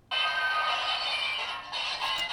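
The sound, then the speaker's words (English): Glass shatters with a sudden bright crash, then a dense, sustained spray of tinkling, ringing shards that keeps going loudly for about two seconds, with no voices. “Oh, broken glass.”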